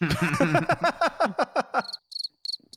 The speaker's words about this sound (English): The crickets.